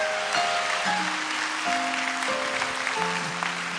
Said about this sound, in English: You know, give them a big round of applause, will you?